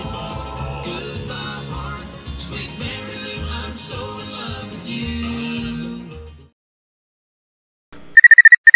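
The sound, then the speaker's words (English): Busy music fades to silence, then a car remote lock chirps near the end in a quick burst of several sharp, high-pitched beeps, loud; the remote is pressed to unlock a car called Mary Lou, with Moroccan leather seats and Italian design. “I beep the remote and she winks back. I know she is ready, really ready. Another chirp.”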